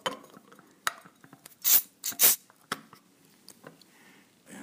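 A bottle of homemade Saison beer being opened: a few glassy clicks and taps, then two short, loud bursts of fizzing hiss as the gas escapes, followed by softer clinks. No one speaks.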